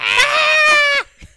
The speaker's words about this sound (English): Yo, yeah, they scream. No, goats scream, they too. They go, blah. Yeah. And a goat's more like, ah. But goats can be like, eh. Or they can scream like that.